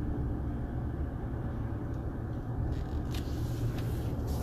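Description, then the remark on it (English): A steady low engine rumble from inside a car creeping along in traffic behind a pickup truck and a dump truck, with a constant road drone and a few faint clicks and rattles toward the end. “As I drive up slowly behind a pickup truck and a dump truck who are doing their, getting their occupational work in.”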